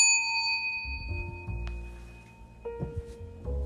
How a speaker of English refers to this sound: And let the bell synchronize with your spirit.